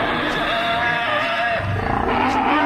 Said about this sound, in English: Did you hear that roar? Yes. Well? That, I fear, is my Vanessa. She was my first clone. I'm afraid I rather misjudged the proportions. Vanessa is the T-Rex of brides. 250 feet high.